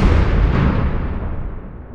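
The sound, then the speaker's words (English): A single loud propane cannon blast booms out as the cannon fills with propane and ignites it, then trails off into a long, rumbling, echoing decay that slowly fades. No one speaks. “So it can fire every 30 seconds, or you can have it just do a one-off shot, and it fills up with propane, and then it ignites it, and it creates a loud bang.”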